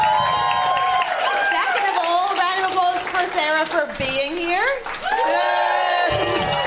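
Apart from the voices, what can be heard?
audience applause and cheering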